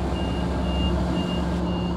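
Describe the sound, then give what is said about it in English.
Train door warning beeps sound as a series of four evenly spaced, high-pitched tones over a steady low rumble of machinery. No one speaks. “The train is leaving. Goodbye. Doors closing. Please stand clear.”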